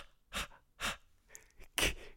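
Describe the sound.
A person imitates the rhythmic disco-style breathing of a theme tune with sharp, breathy huffs in a steady beat, about four bursts over two seconds, fairly loud with no talking.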